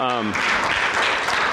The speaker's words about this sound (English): Yesterday, we had our food giveaway. Yeah, I can go ahead and clap for that. That's awesome.